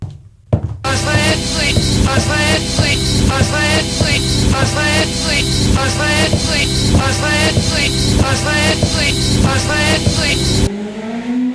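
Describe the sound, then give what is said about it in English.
A motorcycle engine roars as part of a loud, driving song from a game, with a steady pulsing beat; near the end the music cuts out and the engine's revving pitch climbs on its own. “That motorcycle was part of the goddamn song.”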